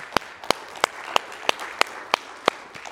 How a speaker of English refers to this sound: Come on, give the Lord another hand clap, please.